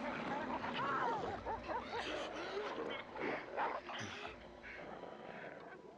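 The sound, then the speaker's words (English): German Shepherd dogs attack a man in a loud, frantic scuffle, with overlapping yelps, whines and barks, continuous throughout, over a busy, noisy background with indistinct voices. “Him German Shepherd's lighting him up.”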